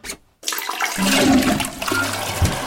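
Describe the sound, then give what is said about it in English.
A toilet flushes in a bar's toilets: a short click, a brief pause, then a loud rushing gush of water with gurgling, low swirling tones that carries on steadily to the end. “But first I felt a wee to be in order, so I made my way through the bar towards the toilets,”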